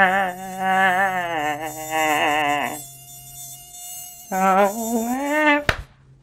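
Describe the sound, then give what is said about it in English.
A mosquito whines right by the ear in two loud, wavering buzzing bursts with a brief lull between them. The second burst is cut off by a sharp smack. “But the one thing I will miss is when they fly next to your ear at night.”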